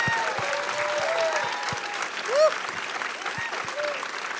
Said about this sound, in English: And I wonder if you might give one more major round of applause for Portrait of a Lady on Fire.